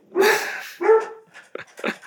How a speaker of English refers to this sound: Sorry, you might hear my dogs. We're all dog people here, so it's good. Xander, that's Xander.